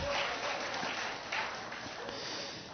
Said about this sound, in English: They're clapping because of those that are visiting, because if I could do that, they know that's a gift of the Holy Spirit in operation in front of them.